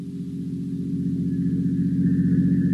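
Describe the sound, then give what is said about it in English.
A motor car's engine drones with a steady low hum that grows gradually louder as the car approaches a decaying, weather-boarded house by glimmering marshes near the coastline, in the heat. No voices are heard. “Only the heat on the glimmering marshes and the decaying, weather-boarded house as a motor car approaches.”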